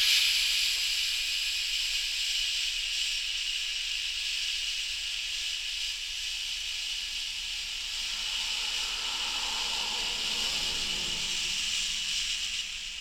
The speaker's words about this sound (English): So we're going to put our hands, let's put our hands here. We're going to breathe in and breathe out.